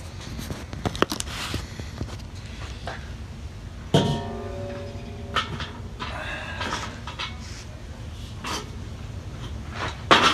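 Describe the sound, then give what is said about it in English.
A 22-inch metal kettle grill on wheels is flipped over, with scraping and clanking, then a ringing metallic clang that hums briefly before more scattered knocks and rattles. No one speaks. “Well, now we're gonna flip it over.”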